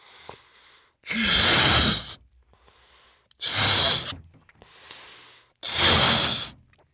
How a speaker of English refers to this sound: like blowing up an incredibly strong and massive balloon. I've got one right here.